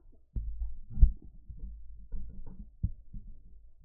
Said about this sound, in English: Is someone knocking on your door? No. Uh-oh. I heard a knock. Might be my foot tapping like this. FBI! Yeah, it's your foot. It's your foot, son.